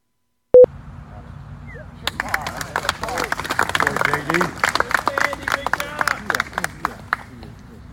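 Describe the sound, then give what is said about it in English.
A short electronic beep, then the golf gallery following John Daly bursts into steady applause and cheering after he finishes a hole for par, dense clapping with shouts and whoops mixed in, carrying on loudly for several seconds outdoors. “So this is a little clip of kind of what it sounded like after he finished off for par on that hole.”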